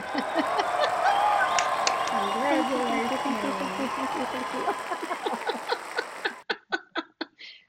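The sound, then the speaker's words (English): A crowd applauds steadily in celebration of a business's third year, with voices cheering and whooping over it, then the noise drops away to about six slow, sharp, evenly spaced hand claps. “I love those claps.”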